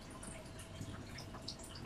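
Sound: water trickling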